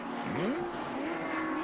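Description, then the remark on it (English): A flat-six race car engine revs hard in a car with a damaged front and apparently no gear engaged, its pitch sweeping sharply upward and then holding a steady high whine, loud over a constant background roar. “I can hear an awful lot of revving of the flat six.”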